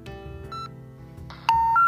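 A woman dials a film producer's number on her cell phone: a few short electronic keypad beeps, followed by a louder run of steady, rising tones like a call connecting, all clean with no voices.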